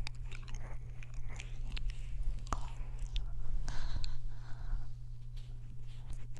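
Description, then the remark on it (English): Crunchy chip eating recorded right into a microphone, with repeated crisp bites and wet chewing clicks over a steady low hum, no voices. “It sounds like she's eating chips.”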